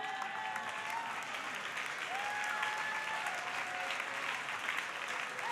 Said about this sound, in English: Your mouth should be louder than these claps.